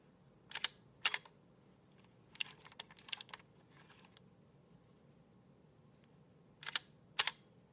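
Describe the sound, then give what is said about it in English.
A vintage Duaflex 3 camera, probably from the mid-1950s, has its film winder advanced to reset the shutter, giving sharp mechanical clicks and short ratcheting bursts in a few separate clusters, with quiet pauses between them and no talking. “Here you hear me advancing the film winder to reset the shutter.”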